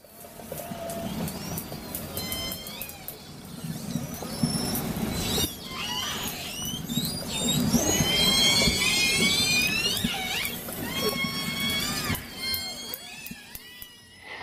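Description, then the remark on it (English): Underwater calls of the J, K, and L killer whale pods in the Pacific Ocean: a series of high, squealing whistles and rising, pulsed calls overlapping one another, over a steady low rumble of water noise, with sharp clicks throughout. “One last thing is that you're about to hear some sounds from the J, K, and L pod, so we hope that you enjoy the sounds from the Pacific Ocean.”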